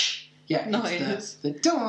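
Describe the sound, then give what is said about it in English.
A quick, airy cartoon whoosh opens, followed by short voiced swooping bursts, like punch swooshes in a fight scene, fairly loud. “It's the whoosh noise, and it's great.”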